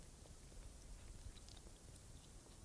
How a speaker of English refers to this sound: How are you liking that? I can't really chew it because it's solidifying my mouth together. How's that going? Oh, God. It's so stuck.